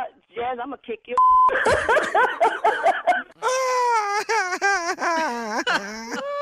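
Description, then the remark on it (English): A baby wails over the phone during a prank call on the Steve Harvey Morning Show, in rising and falling cries that sound thin and phone-filtered, broken by a short electronic beep, then fuller and louder sobbing cries continue to the end. “I got her grandbaby on the phone.”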